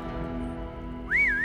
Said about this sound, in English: A sharp whistle pulled Hugo from his thoughts.